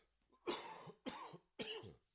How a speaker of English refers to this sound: Excuse me, man. This cough is killing me.